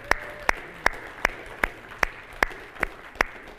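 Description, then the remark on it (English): A church audience gives a round of applause for the audio and video techs: steady, evenly spaced hand claps, about nine sharp claps in a regular rhythm over a low background hum, with no voices. “So what I would like you all to do is give a round of thanks and applause for the audio techs and video techs.”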